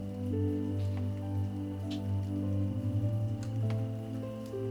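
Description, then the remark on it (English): Scattered raindrops patter and tick against a surface at a steady, gentle pace, layered over a soft, sustained musical drone. The drops stay fairly even in loudness throughout. “Gradually, the raindrops become just a little louder.”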